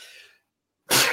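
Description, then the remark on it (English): A single loud sneeze from a person who says they are allergic bursts out after a short sharp inhale and a moment of silence, with a broad explosive hiss that fades quickly. “Bless you.”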